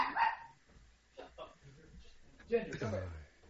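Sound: dog barking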